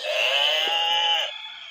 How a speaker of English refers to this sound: So here I have a bunch of questions. Get out your barnyard buzzers. Here we go.